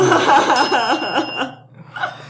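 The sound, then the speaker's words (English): A bright bell rings with sustained high tones for about a second and a half while laughter warbles loudly over it, then a brief softer burst follows. “The bell makes its triumphant return.”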